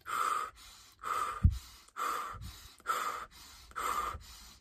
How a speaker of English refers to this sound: When you're really energized, you're moving, you're going, you're doing, you're at a fast pace. That's how you're going to be breathing. Like in through your nose, out through your mouth, in through your nose, out through your mouth.